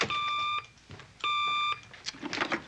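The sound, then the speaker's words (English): A hotline bat phone circuit telephone, called from police headquarters by Commissioner Gordon in Batman, rings in two loud bursts of steady electronic tone. Each burst lasts about half a second, with a short pause between, followed by brief scattered rustling noise. “Plug me in at once into the hotline bat phone circuit.”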